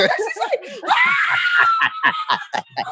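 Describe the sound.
A woman lets out a long, high, ecstatic scream lasting about a second, close and loud, with brief talking just before it and choppy voices or laughter right after.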